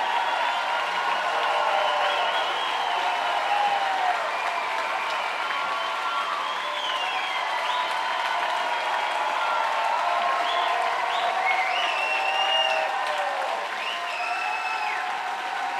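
A large concert audience applauds steadily for the whole stretch, a dense wash of clapping with scattered whistles and cheers rising above it, as five musicians applaud the crowd and take their bows.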